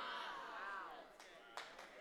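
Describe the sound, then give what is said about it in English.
A few light, scattered claps from an audience in Northern California, a polite golf clap, sparse and quiet, sounding over a lingering voice rather than building into full applause. “Come on, that was a golf clap.”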